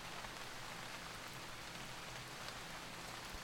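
Steady rain falls in a constant, even hiss of dense patter with no breaks or voices, soft and unchanging throughout.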